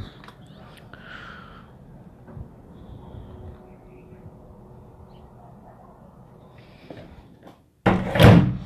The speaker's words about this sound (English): Okay, anyway, I closed the door.